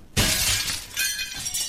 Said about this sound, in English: Holy shit. Oh, my God. The mirror just came down.